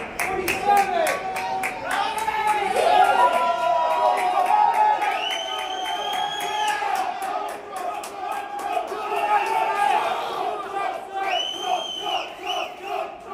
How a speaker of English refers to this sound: here's Donald Trump doing some weirdo celebration in the hall of 40 Wall Street to this small culty crowd that he stages to cheer for him as he says these weird things.